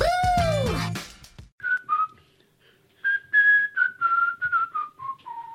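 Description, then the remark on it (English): A person whistles a bright, marching melody alone, a string of clear steady notes stepping up and down in rhythm, fairly loud, after a brief burst of other sound at the start. “I know, she went whistling there.”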